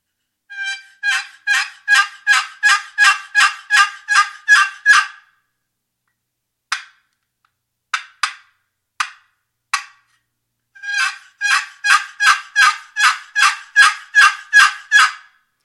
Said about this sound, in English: It's a Primos box cutter, single-sided box. And I just wanted to give you a little demonstration. It's a real nice, sweet sound and call. So I'll run it here for you.